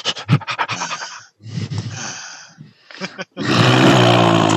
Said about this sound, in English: Hey, you're getting excited because you're breathing into that microphone an awful lot.